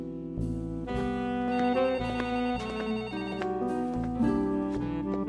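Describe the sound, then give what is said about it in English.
A telephone rings with a bright, melodic electronic ringtone, its tonal notes repeating steadily over several seconds, fairly loud with no voices present. “I let the phone ring as I grabbed my jacket and hat off the rack.”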